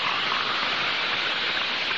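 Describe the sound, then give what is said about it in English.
A steady, dense hiss of fizzing bubbles from Saratoga Vichy, a naturally carbonated mineral water, fills the whole stretch at an even level with no voices. “That's merely the sound of Saratoga Vichy and its long-lasting fizz.”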